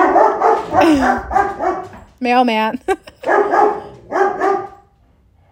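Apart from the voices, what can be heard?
dog barking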